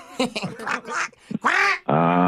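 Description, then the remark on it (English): A person imitates a duck, making a run of raspy, nasal quacks, ending in one longer, buzzing quack; no actual words are spoken. “I always wore that Donald Duck hoodie in the back, and I would just sit in there and, you know, crack.”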